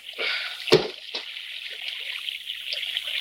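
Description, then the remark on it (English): A heavy rock thrown into quicksand at a creek drops with a single thick, wet plop, followed a moment later by a smaller squelch, over a steady trickling, watery hiss with faint gurgles. “That sand swallowed that rock like it was starving.”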